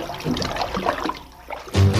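Bathwater splashes and sloshes in irregular bursts for most of a couple of seconds before a loud, low musical tone cuts in at the end.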